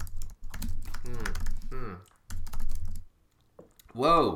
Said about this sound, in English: Whoa, what's with the typing? What? You can hear me typing? Jesus Christ. Oh, that was, you were typing, in a frenzied manner. Of course we can hear. Typing quickly, you mean? Typing at a normal rate for people? No, sounded angry.